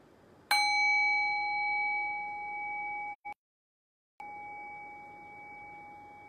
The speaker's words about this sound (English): And I'm going to ring the sound of the bell. Rest your awareness on the sound of the bell. Allow the decay of the bell to guide your awareness into silence.